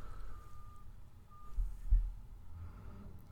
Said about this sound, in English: And speaking of awesome performances, I have a giant salt truck outside of the studio here deciding to interrupt.